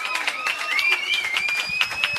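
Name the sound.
round of applause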